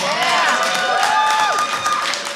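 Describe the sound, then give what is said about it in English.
A crowd at a music-industry event applauds a DJ steadily throughout, a dense wash of clapping with whoops and cheering voices rising and falling over it, staying loud the whole time. “Can we get a big round of applause also for …?”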